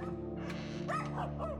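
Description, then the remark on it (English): Small dogs, little wiener dogs, yap inside a house in quick, high-pitched bursts, three or four sharp barks in a row, over a steady low hum in the background. “And the dogs were barking, the little weenie dogs were in there barking, and yap, yap, yap, yap.”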